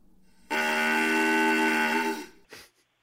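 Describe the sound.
A small brass call with a reed, like a clarinet's, and a long tube, looking like a tiny metal clarinet, blares one long, loud, nasal note that mimics a cow's bawl, followed by a brief breathy puff. There is no talking.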